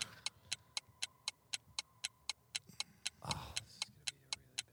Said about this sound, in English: Shot clock is ticking down, guys.